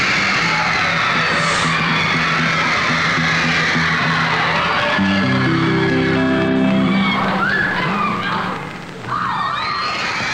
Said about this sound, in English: Wow. Look at all those people screaming for him. Ladies and gentlemen, it must be 1,000 people there.